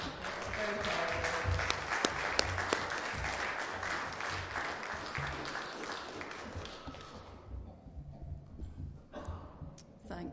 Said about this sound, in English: So I think they deserve a big clap today.